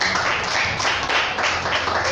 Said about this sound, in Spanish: Entonces yo los felicito a todos los que hoy se levantaron y vinieron a la casa del padre. Denle un aplauso.